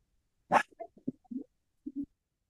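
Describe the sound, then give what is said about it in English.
A dog gives one sharp bark, then a few short, softer woofs and grumbles, fairly quiet, with no one talking; the dog is reacting to someone opening a door somewhere. “My dog heard somebody open a door somewhere.”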